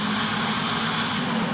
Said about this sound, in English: They just started up the conveyor belt. You're the worst wood chipper operator ever. My God. Oh, there it goes. There it goes. It's chopping.